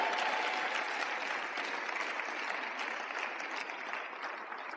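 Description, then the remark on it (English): An audience applauds steadily for a child and his mother as they take their seat, dense overlapping claps forming a continuous wash of sound that holds fairly even in loudness throughout, with no voices audible over it. “Please help me clap”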